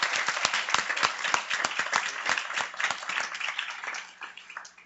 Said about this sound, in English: So if you would join me in giving him a round of applause for that.